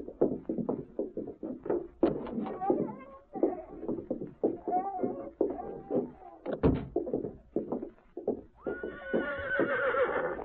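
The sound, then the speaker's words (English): A saddled horse named Victor whinnies loudly while hooves clop in a steady, busy rhythm, with a long, rising neigh near the end. “Go on, get out to your horse.”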